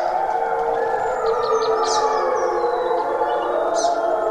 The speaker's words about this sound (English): The boy who flinched at goldfish grew up to chase the call of the wild. Packs of wolves in stereo don't even really bother him.